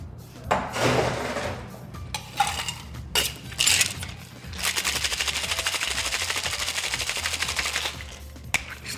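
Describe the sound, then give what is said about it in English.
A few clunks and scrapes of handling, then a cocktail shaker with ice and an apple, orange and citrus martini is shaken hard: a fast, steady, loud rattle lasting about three seconds before it stops, before the ice is strained out. “So I'm going to shake this and then strain out the ice because we're going to do something really special with it.”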